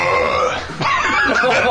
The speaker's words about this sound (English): That's Coca-Cola for you. Oh, don't do that to me. You can't burp.